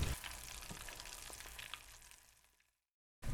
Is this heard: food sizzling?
yes